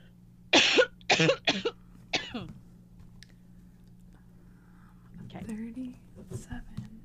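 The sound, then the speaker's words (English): A quick series of four loud coughs in the first couple of seconds, followed by a pause and some faint, indistinct vocal sounds over a steady low hum. “Looks like I'm gonna cough.”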